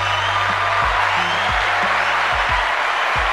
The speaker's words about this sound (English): Another round of applause for them, by the way.